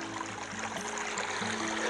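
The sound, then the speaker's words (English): Steady trickling of a shallow mountain stream flowing over rocks as someone crosses its bed, a continuous bright babble filling the background with no voices. “All right, so I'm just crossing the bed of a stream here. You can probably hear the water running.”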